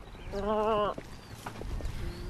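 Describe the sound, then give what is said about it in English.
A hooved animal stamps its foot on the ground, a few short thuds following a brief exclaimed voice, with soft rustling and breathing around it. “Oh, that one's stamping. Oh. Did you hear that?”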